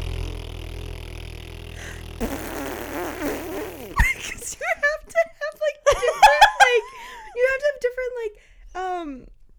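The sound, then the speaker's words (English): A series of wet, sputtering fart noises, apparently blown with the mouth, comes in several quick bursts of varying pitch, fairly loud after a brief rustle, with a faint giggle mixed in. “Like that fart that I just did, was that three farts?”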